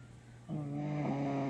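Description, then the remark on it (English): A person snores: after a brief quiet moment, a low, buzzing, droning snore rises and holds steady to the end. “snoring on the pulse.”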